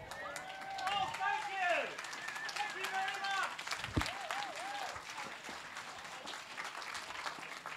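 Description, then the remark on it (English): A crowd at the WOMAD festival applauds loudly and steadily for the whole stretch as a performer walks on stage, dense clapping mixed with whoops, whistles and cheering voices rising and falling above it. “and he walked on stage to outrageous applause.”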